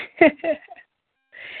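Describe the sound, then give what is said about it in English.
A single sharp sneeze bursts out, a quick voiced intake then an explosive release, followed by a short pause and a soft breathy rustle. “God bless you.”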